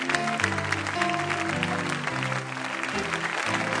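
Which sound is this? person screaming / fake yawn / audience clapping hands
audience clapping hands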